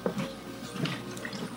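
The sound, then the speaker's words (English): Water runs steadily from a tap for a moment as someone gets more water, a continuous splashing hiss with faint drips and gurgles mixed in, and no voices. “I'll get some more water here.”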